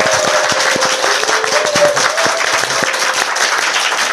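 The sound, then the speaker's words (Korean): A group of people clapping to close an interview on the show Kim Yong-min Briefing, a dense, steady patter of many overlapping hand claps that stays loud and even for about four seconds with no talking. “네, 박수 치고 마치죠.”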